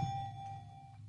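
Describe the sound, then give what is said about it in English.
A single struck bell sound effect, hit to introduce the last trivia question on a sports show, rings out with a steady, clear tone that sustains and slowly fades over about a second, with no talking. “I wish I had a regular, like a neutral bell, but I really just wanted to hit something there.”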